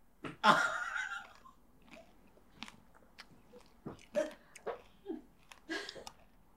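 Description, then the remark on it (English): A woman bites and chews something stale: loud crunchy chewing with a burst of sharp crackling bites at the start, then a steady run of smaller crunches and mouth clicks every half second or so. “Oh my God, it's crunching like a Dorito.”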